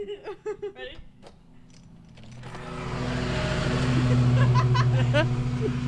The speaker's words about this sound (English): They're still mowing the lawn outside. It's true. we were the lawn mowing preview.